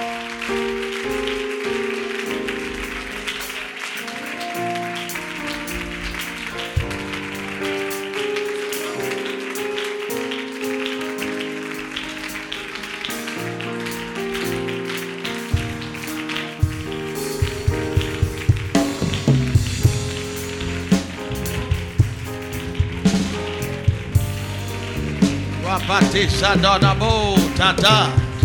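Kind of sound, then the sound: crowd, audience clapping hands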